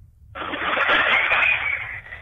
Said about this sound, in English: Proper bandsaw, everything. Oh, mate. Honestly, do you want to hear a little bit? Yeah, go on.